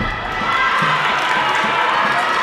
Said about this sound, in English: The rest of the team picks up a cheer.